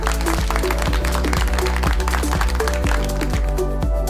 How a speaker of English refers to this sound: Did you get all the correct answers? You deserve a round of applause.